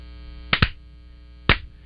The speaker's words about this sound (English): Two claps and a suey.